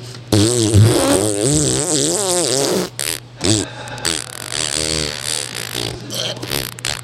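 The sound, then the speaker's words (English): A long, loud, wavering fart blown right into the microphone, sputtering and buzzing for several seconds with a brief pause before trailing off into shorter flappy bursts. “Send us a recording of a fart.”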